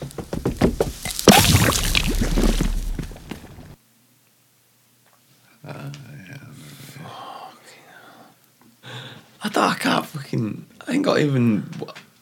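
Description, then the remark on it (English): A loud, breathy sizzling hiss lasts a few seconds and cuts off abruptly as a toy's forehead, burnt through with a magnifying glass, is dunked into a dog's water bowl. After a short silence, voices talk in bursts. “Sid's just burnt a hole in Woody's forehead with a magnifying glass and he just dunks it in the dog bowl”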